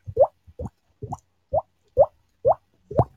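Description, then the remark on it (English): A voice imitates a water drip with a steady series of seven plopping mouth pops, each one rising quickly in pitch, spaced about half a second apart, with no talking. “We're actually making those noises with our mouths. Yes, that's one of those things that sounds like a drip.”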